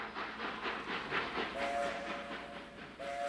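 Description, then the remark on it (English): A massive circus train rumbles and clatters with a steady rhythmic pulse into the Canadian Pacific Railway yards in Calgary on August 3rd, 1926, sounding loud, as a shrill whistle sounds twice in short blasts over the noise. “on August 3rd, 1926, the massive circus train screamed into the Canadian Pacific Railway yards near what is now the Calgary Stampede Grounds.”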